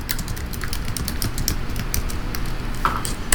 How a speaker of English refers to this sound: Sorry, I can know you can hear me typing.